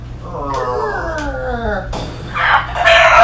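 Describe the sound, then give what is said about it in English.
A person vocally imitates a disco box noise: a strained, wavering howl with wobbling pitch, followed by a harsh, raspy, hissing burst, loud and without other talk. “I like the disco box noise. Yeah, it fucking tears my throat.”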